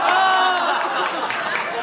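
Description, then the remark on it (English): A crowd applauding steadily, dense crackling claps blended with voices and cheers, holding at an even, fairly loud level for about two seconds. “I mean, like I think that applause means we're all in love with a bunch of people who constantly let us down, right,”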